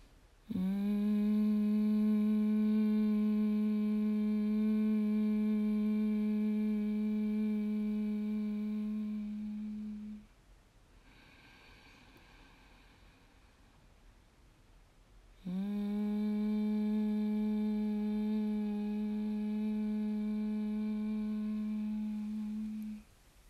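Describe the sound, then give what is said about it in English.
A single voice practices humming bee breath: two long, steady low hums made on the exhale, each lasting several seconds, separated by a quiet pause with a soft inhale. The humming is even, with no talking. “Off to your humming bee breath, take a big breath in. Make that humming noise on the exhale.”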